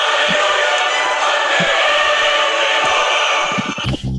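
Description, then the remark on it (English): Steady, dense applause from many hands in a studio, a loud continuous patter that holds for about four seconds before a voice briefly cuts in at the very end. “The applause is not necessary at all.”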